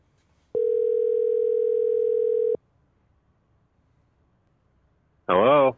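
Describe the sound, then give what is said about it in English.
A single steady telephone ringback tone lasts about two seconds, then falls silent before a voice briefly answers at the very end. “Let's see if he's around and willing to answer the phone.”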